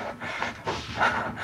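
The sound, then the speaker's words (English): Rapid, ragged, frantic panting breaths of a woman in a hallway gone pitch black, fairly loud, pulsing in quick uneven bursts with no talking. “We can only hear the sound of Gray's frantic breathing.”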